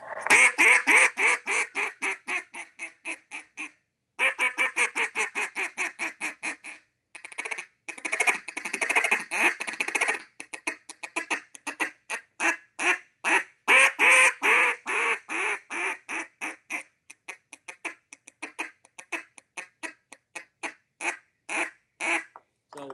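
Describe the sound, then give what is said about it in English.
A duck call blows loud, rapid strings of raspy quacks, broken into bursts with short pauses, ending in a run of quick single clipped notes. No voices. “You know, it sounds like a lot, but it's really quacks and little single cuts.”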